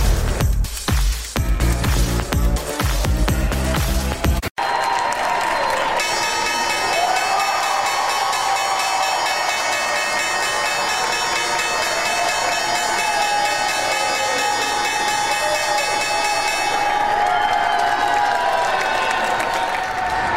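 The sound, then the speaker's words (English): After a brief loud burst, the New York Stock Exchange opening bell rings in the morning in one long, steady, bright tone for about ten seconds while a crowd applauds and cheers throughout, the clapping carrying on after the bell stops. “That was the opening bell this morning.”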